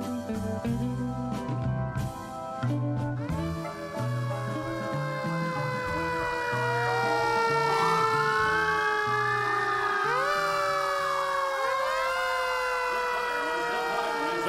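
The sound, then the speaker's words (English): A fire truck siren wails steadily, its rising and falling tones sweeping over a low engine rumble and traffic noise, loud and continuous throughout with several overlapping pitch glides. “Ah, a beautiful wail. Legend says it contains the screams of every soul who have perished in flames. Also, it lets us know there's a house fire somewhere.”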